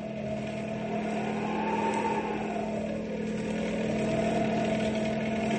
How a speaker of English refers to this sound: Now let's slide the windows of the car open so we can grab the rope.